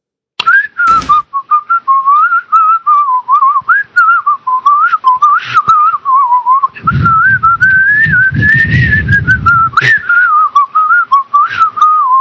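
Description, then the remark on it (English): A person whistles a meandering, wavering tune for about twelve seconds, steady and fairly loud, with a burst of low rumbling noise and a few sharp clicks partway through. “Oh, hold on. Whistle for a second.”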